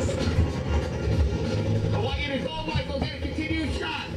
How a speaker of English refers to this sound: Fuck, it sounds like my fucking house every morning. Fucking helicopter. Sounds like my exhaust fan in my bathroom.